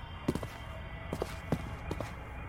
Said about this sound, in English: But I didn't hear any noise, until I heard some footsteps. It was two policemen, the tall one and the fat one.